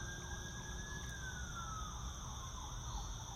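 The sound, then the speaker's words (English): Emergency vehicle sirens wail outside over a steady background hum, the pitch sliding downward as they pass, with no one talking. “I hear sirens.”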